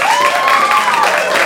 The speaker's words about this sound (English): Please applaud for the character you think should win this battle. Please applaud now for Santa. Thank you. And applaud now for Gandalf.